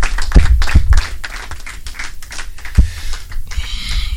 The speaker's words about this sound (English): Let's applause unto Jesus.